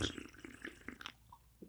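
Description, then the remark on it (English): Wet slurping of a Black Rifle Coffee ready-to-drink canned coffee beverage: a quick series of short sucking sips with brief gaps, then a quieter pause and one last small slurp. “I normally don't slurp, but I had to prove it.”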